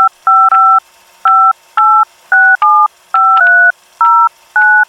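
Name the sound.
telephone keypad dialing tones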